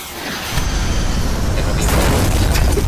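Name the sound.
explosion sound effect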